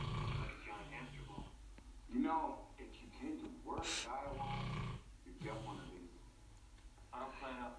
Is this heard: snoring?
yes